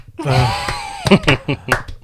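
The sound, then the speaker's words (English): A voice sounds briefly at the start, then a handful of sharp hand claps ring out one after another at an unhurried, slightly uneven pace. “Slow clap.”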